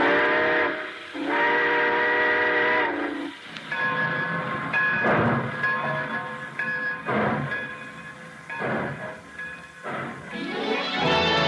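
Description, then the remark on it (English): A train sets off with a loud, sustained whistle blast, followed by rhythmic chugging and clanking of cars as it gathers speed, with another whistle rising at the end. “All aboard! Well, folks, it looks as though we're ready to pull out.”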